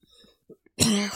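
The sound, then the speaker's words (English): A person breaks into a loud, harsh hacking cough after taking a hit of smoke, following a few faint raspy breaths and small throat sounds. No one speaks. “I thought it'd be cool to take a hit at the same time as in the story, and I can't fucking breathe.”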